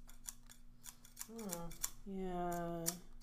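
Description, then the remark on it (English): Scissors snip and click repeatedly, a crisp irregular metallic clicking, while a voiced, tonal sound rises over it partway through. “Leave my scissors.”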